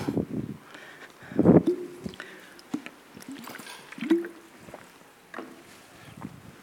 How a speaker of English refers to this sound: I'm just going to get some water from my bottle, actually.